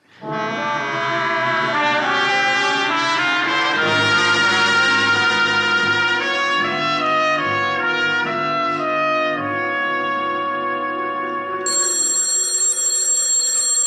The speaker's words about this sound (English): Telephone's ringing